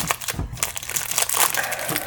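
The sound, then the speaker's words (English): Loud, continuous crinkling of a plastic protein bar wrapper, with sharp crackly bursts and rustles that rise and fall irregularly over about two seconds, no voices present. “Protein no, bar. Sorry. It's the loudest wrapper.”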